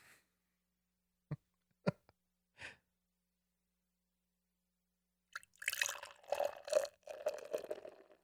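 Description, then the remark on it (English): A few sharp clinks and taps, then about three seconds of beer glugging and splashing into a glass with a bubbly, fizzing rush, fairly loud, no voices. “All right, let's pour this guy out and see what we got here.”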